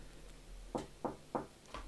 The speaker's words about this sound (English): Well, you always get those knocks on the door, like. Who is it? I'm using it. No. I'm in the bathroom. You're knocking on the door.